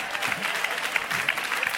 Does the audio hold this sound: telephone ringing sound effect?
no